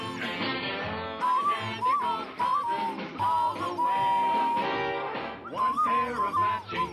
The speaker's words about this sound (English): I have to do this, the death whistle to send their spirits off.